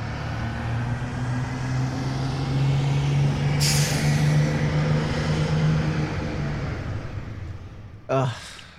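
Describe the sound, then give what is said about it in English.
A bus engine rumbles steadily, with a sharp air-brake hiss midway and a brief pneumatic burst near the end. “it was a big weekend in the Premier League for bus parking, which is why we're in our bus.”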